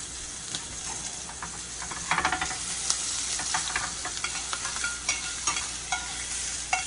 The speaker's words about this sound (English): Now I'm going to drop my gnocchi in my pot of water back here.